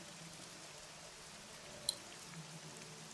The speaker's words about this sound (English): Yeah, you begin to hear kind of the echoes of rain outside. Little drops of water start to appear on the dirt ceiling that falls to the ground.